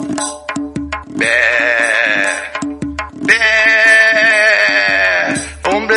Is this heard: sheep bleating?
yes